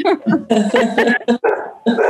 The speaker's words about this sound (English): Even the dog liked that one. Yeah. She's saying hi, too.